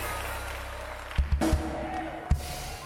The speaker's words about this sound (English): In the name of Jesus, come on, clap your hands and scream like your voice is yours and praise Jehovah.